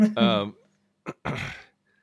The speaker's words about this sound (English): I didn't mean to clear my throat into the mic, sorry.